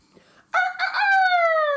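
A rooster crows once, loud, starting with a few choppy bursts before stretching into a long, slightly falling drawn-out note after a brief quiet lead-in.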